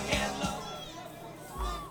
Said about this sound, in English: Yeah, sorry. Wow. That got the crowd upset.